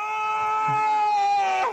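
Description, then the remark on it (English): A man lets out one long, strained moan of climax, a steady, reedy, high-pitched tone that holds for over a second before sliding downward and cutting off abruptly. “I had no idea that was a dude coming.”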